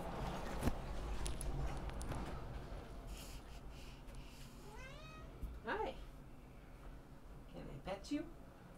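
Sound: cat meowing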